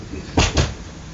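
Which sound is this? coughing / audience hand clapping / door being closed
door being closed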